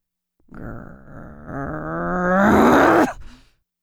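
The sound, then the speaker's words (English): A low, drawn-out growl lasts nearly three seconds, swelling louder and climbing in pitch toward the end before it cuts off abruptly. No one speaks. “She growls. Shit. Now she's growling.”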